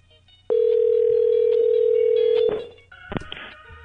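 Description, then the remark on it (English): A loud, steady telephone dial tone hums for about two seconds, then cuts off and gives way to a few short dialing beeps and clicks as a number is entered to call a bookstore. “I'm calling the bookstore and then quitting for the day.”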